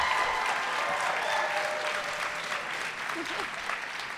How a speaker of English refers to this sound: I think it means something that there's not a huge number of people clapping, but they clapped very loudly.